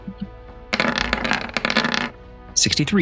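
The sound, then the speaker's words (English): Dice rattle and clatter across a tabletop in a quick burst of small hard clicks lasting over a second, rolled for damage during a tabletop game, and a voice speaks briefly afterward. “Still rolling low on these damages.”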